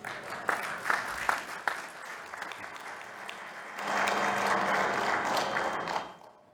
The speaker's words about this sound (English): That was for the let's eat part, I assume. That was the kiddish applause.